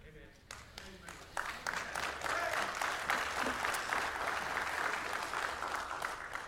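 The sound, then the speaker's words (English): A church audience breaks into sustained applause after the preacher says 'Jesus saves', many hands clapping in a dense, steady wash that swells after the first second and stays loud throughout, with a few voices faintly mixed in. “I know you had to clap because your neighbor did.”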